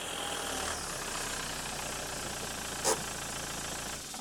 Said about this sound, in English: is parking his car in his parking space in the car park when the screen on his smartphone lights up.